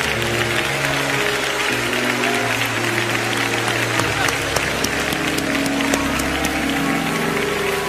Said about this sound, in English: Clap your hands as Bishop Jakes comes.